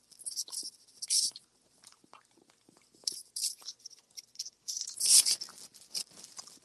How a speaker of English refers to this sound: I forgot that we literally sat here and ate Cold green bean. This is disgusting, man. Yeah. It's like super crunchy. It's weird.